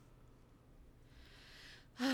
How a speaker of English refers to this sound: Sorry. I was yawning when you were talking.